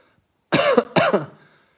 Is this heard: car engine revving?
no